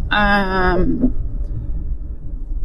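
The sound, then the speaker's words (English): A steady, low rumble of a truck cab on the move in traffic at sunrise, holding constant throughout, with a brief harmonic tone rising over it in the first second. “It's a car episode, a truck episode.”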